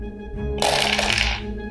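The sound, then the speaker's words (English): Dice rattle and clatter down through a tower in a dense burst lasting under a second, over a low steady background hum. “So avoid bumping your miniatures with your dice rolls. Try out a Staggering Dragon Dice Tower.”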